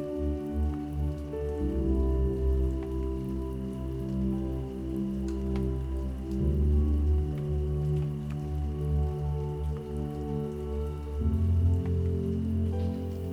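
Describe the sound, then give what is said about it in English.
Steady rain falls on a surface, a continuous wash of patter with a low, droning undertone and no voices, holding an even loudness throughout. “And tonight, her music is the rain.”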